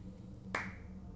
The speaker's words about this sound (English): The slow clap? Really? Yes.